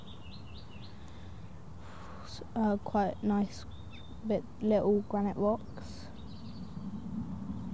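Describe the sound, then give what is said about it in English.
Small birds cheep faintly outdoors over a landscape of bracken, trees, grass, scattered little houses and cattle, thin high chirps at the start and end, while a person speaks briefly over a low breezy background. “Some like crows and birds flying around and birds cheeping.”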